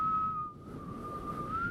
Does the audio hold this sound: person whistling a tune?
yes